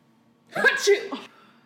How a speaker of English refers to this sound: She sneezed. Big sneeze.